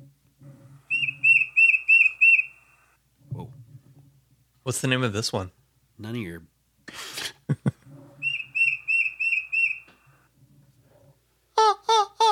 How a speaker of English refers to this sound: This is the tufted titmouse. It sounds titty. Yeah, it's a little titty. Tufted titmouse. Tufted titmouse. Yeah. Tufted titmouse. It's a cute little bird. It has like a little mohawk and sounds stressed out, doesn't it?